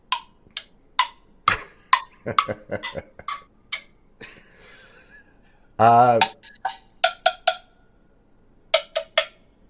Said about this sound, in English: Only one. And the clock's ticking.